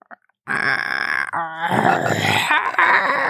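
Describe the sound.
A voice imitates a low, guttural growl, likened to a growl mixed with the sound of the Grudge girl from the movie, a loud croaking rasp held for nearly three seconds with a rattling, strained texture, starting abruptly after a brief click.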